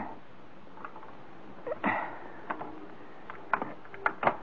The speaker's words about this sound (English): Oh, here's a side door. Oh, is it locked? Well, if it is, it's not going to be for long.